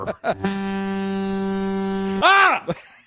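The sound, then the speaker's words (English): A foghorn sound effect played from a soundboard: one steady, buzzy horn blast holds for nearly two seconds, then breaks into a short wavering, swooping tail. Brief vocal sounds come just before it. “It was a foghorn.”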